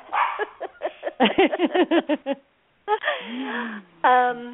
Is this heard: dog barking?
yes